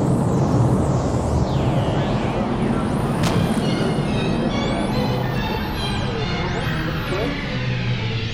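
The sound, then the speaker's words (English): A rocket engine roars steadily at liftoff, a dense, loud, unbroken low rumble lasting throughout, with thin high whistling tones sweeping up and down above it. “6, 4, 3, 2, we have main engine start, 0, and liftoff.”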